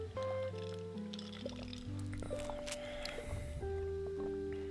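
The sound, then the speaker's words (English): Someone drinks water from a container, with soft wet swallowing and sloshing sounds, partly masked by steady background music playing throughout. “Dink it. Dink the water.”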